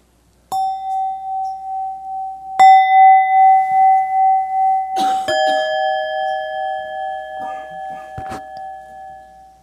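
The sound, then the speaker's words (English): Several clear bell strikes at about 0.5, 2.6, 5 and 5.3 seconds, each leaving a long, sustained ringing tone that overlaps the next, with faint scattered clinks underneath. No one speaks. “Bells ring.”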